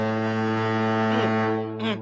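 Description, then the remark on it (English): A loud, sustained foghorn blast, sounded to mark a 49ers touchdown, drones steadily with a deep, rich harmonic tone, followed near the end by a brief higher swell; no voices are heard. “And when you hear the foghorn, that means touchdown.”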